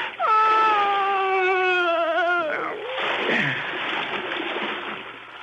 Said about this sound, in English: I closed my ears to her moans. And I pushed them both into the dark water.